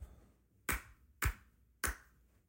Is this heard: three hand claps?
yes